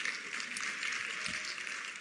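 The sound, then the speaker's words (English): An audience claps steadily for about two seconds, a dense, even patter of many hands at moderate volume with no voices over it. “The ladies, you can clap.”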